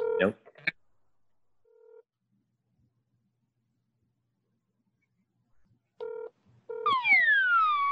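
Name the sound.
telephone keypad dialing tones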